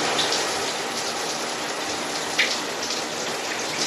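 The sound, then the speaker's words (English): A steady hiss of running water spraying down without pause from a shower someone is taking, with a few brief splashes rising above the constant wash and no voices. “One thing that always makes me feel better is taking a shower and getting some fresh air outside.”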